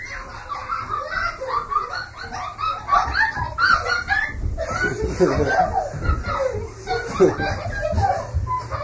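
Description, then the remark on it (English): A dense, continuous chorus of birds chirping and clucking fills the whole stretch, fairly loud, with a busy murmur of voices mixed underneath. “Oops, like birds.”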